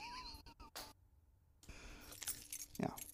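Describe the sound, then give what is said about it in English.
A bunch of truck keys jangles in a few quick metallic bursts, then a brief hush before more soft clinking and rustling as the keys change hands. “Can I have the keys to the truck?”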